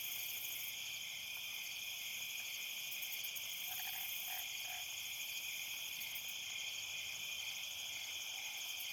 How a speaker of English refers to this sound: And really the only thing kind of going on is those nighttime crickets. Nice sound of a forested night.